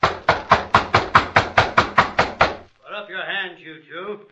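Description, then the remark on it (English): About a dozen loud knocks on a door in a quick, steady rhythm, followed by a man's voice speaking once the knocking stops. “Nobody answers, Hoppy. You figure this is the right place? Yeah. Wade Benson's name is on the gate. Knock again.”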